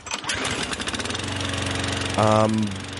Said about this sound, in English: Is that a lawnmower now?